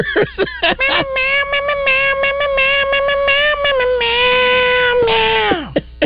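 A voice imitates a cat with one long, loud, drawn-out meow. It holds steady for several seconds, then bends downward and trails off. A few short choppy sounds come before it.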